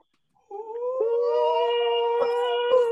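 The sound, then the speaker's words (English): A loud victory scream rises after a brief silence and holds as a long, wavering, howl-like cry for a few seconds, sustained, with no talking. “Victory scream.”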